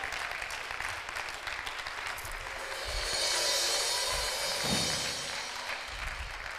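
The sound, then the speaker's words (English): An audience claps their hands, called to clap if God is healing them today, in a steady, dense wash of overlapping claps that swells slightly midway and holds through to the end, with no one speaking. “Clap your hands if God is healing you today.”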